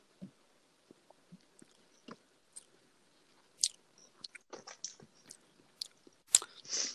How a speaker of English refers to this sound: Strong. It's strong on the malt taste on the first sip. And then Yeah. that aftertaste, you definitely get that hazelnut.